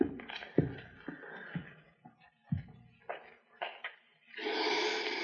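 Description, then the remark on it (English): Several light clinks and knocks, like cups and utensils being handled, then a coffee grinder grinding coffee beans kicks in with a loud, steady, buzzing whir that runs to the end. “Coffee grinder, hear it?”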